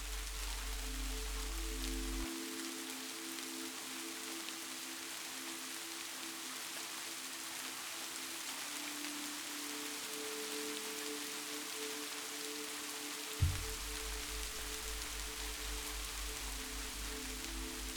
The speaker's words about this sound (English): As you listen to the rain, you gently smile and feel a sense of joy as you realize this sound is so much more than you had ever thought it had been before.